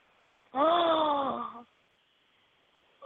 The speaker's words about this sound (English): Oh my. I heard a gasp.